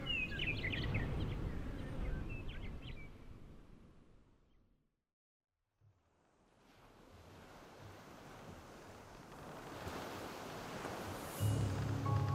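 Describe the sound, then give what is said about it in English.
Soft, steady washing of calm sea waves in daylight, gently rocking a small boat, with a breezy hiss, fading into a brief hush midway before the gentle surf swells back in. Faint bird chirps drift above it early on. “In the light of the day, the sea is calmer now, gently cradling amidship, hardly more than a boat,”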